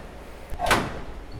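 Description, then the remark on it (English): A wooden specimen drawer of bullet ants slides out with a short scraping rumble, ending in a soft knock, followed by a second faint bump about a second later, otherwise quiet. “So right now I've pulled a drawer out of bullet ants, which are really big.”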